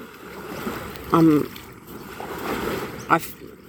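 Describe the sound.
A steady wash of flowing river water runs throughout, heard by someone sitting beside the river, broken by two short bursts of a voice.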